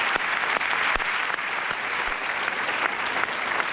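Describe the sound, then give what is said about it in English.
Steady, sustained applause from a large TV talk show studio audience for a guest, a dense wash of many hands clapping at an even loudness for a few seconds with no voices rising above it. “We applaud you for being here.”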